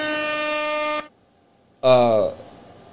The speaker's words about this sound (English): So, ladies and gentlemen, as a matter of fact, go ahead and hit him with the air horns.